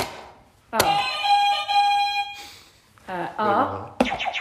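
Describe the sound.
A quiz buzzer is pressed once, giving a loud, bright electronic tone that holds for about a second and a half before cutting off, followed by brief voices.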